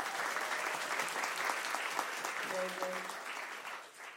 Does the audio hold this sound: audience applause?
yes